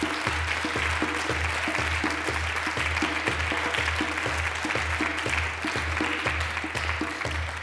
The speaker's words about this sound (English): I'm South Asian. We don't do well with applause.